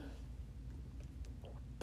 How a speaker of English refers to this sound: I feel like I'm having this, like, weird, like, reaction to something because I'm sniffling a lot, so I have my bottled water here, so excuse me if you hear pauses and gulping.